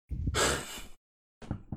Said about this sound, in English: Cause I'm yawning over here. I'm yawning over here. So I guess I'm tired.